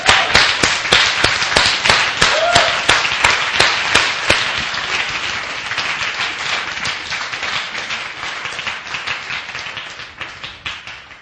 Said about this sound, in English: Isn't that wonderful? Can you give Jesus a clap offering?